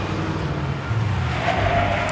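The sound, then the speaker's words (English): A car engine rumbles steadily as the vehicle drives, with a short high tire squeal creeping in near the end, like a brief skid. No one speaks. “It's a car. He's found a car.”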